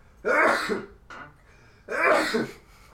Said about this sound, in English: I'm leaving those sneezes in. Just kidding.